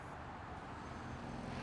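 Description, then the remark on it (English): A car engine drives off, a steady, continuous rumble with road noise that holds an even level for the whole moment, fairly quiet and with no voices. “And so began the car chase scene.”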